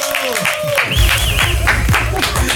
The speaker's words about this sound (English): Okay, guys, this is something that I want to have a little bit of an applause for.